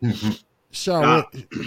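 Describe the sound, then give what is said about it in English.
A few rough, voiced throat-clearing noises in quick succession: two short gruff bursts, a pause, then a longer raspy grunt sliding in pitch, followed by two brief huffs. “I wasn't saying that. I was clearing my throat.”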